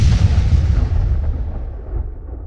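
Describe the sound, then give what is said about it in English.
A loud, deep explosion booms at night as the Burning Man effigy is set ablaze at the Burning Man festival, amid intense heat from the fire. Its low rumble rolls on and slowly fades over a couple of seconds as the crackling high end dies away. No one speaks. “There's explosions that happen and like the heat from the fire was so intense, like I thought my camera was gonna melt and I thought my face was gonna melt.”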